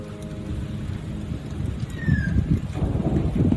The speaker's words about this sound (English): So here's another sound. This is the thunderstorm that hit once I got home from the market.